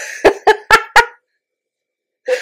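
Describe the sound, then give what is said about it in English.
A quick run of four short, sharp sneezes in rapid succession, loud, followed by silence and then the start of another burst. “Bless you.”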